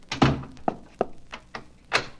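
A heavy door to a room thuds shut, followed by a series of lighter knocks and clunks, like a latch and lock being worked as it is locked, with no one speaking.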